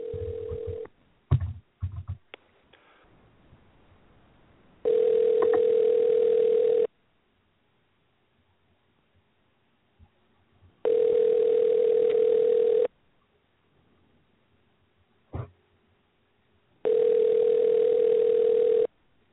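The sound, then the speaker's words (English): Telephone ringback tone heard over a phone line: three long, steady electronic tones, each about two seconds, separated by quiet gaps, after a few clicks and handling noises at the start. “Yeah, how about answering your phone?”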